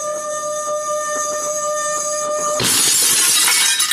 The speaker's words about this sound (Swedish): Så sätter jag glasen nära varandra och sen gnider jag på det andra glaset.